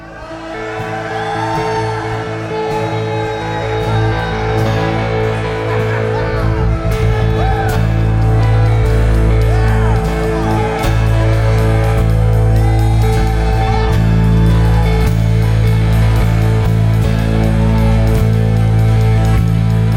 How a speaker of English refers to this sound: This is the kind of place that you can shout to the Lord. Man, this is the sacrifice of praise. It's us expressing our love for our Father.